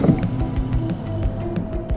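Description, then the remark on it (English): A car engine drones steadily and fairly loudly as the vehicle drives off from a militarized stop on the road, its low rumble joined by a faint whine and a regular ticking rhythm throughout. “I'm gonna hit gas.”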